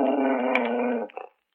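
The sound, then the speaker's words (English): A dog at a door gives a steady growl lasting about a second, then trails off into a couple of short, softer grumbles. No one speaks. “It seems that my dog has been scratching at your door again.”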